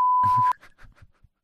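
A loud, steady censor beep holds a single pitch for about half a second, then cuts off into a few quieter, clipped fragments of speech.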